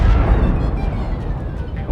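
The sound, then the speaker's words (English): A pasta cannon charges and fires to blow up the Balrog and the pasta pod: a loud, sustained explosive rumble, heavy and booming in the low end, rolling continuously for a couple of seconds like a cannon blast and its explosion, with no voices. “Let's blow them up instead. Okay! Pasta cannon! Charge and fire!”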